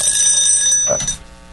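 A timer alarm rings loud, a shrill, steady electronic tone that holds for about a second and then cuts off, leaving a brief hush. No one speaks.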